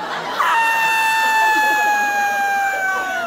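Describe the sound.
A person lets out a loud, piercing, blood-curdling scream as high as they can go, held steadily for about three seconds with only a slight drop in pitch, alone.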